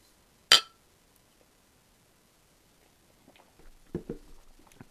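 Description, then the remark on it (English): A sharp glass clink rings out once, then a pause before soft sipping and swallowing noises from someone taking a first sip of an 8% beer, with no talking. “So, yeah, I'm going to go in for my first sip.”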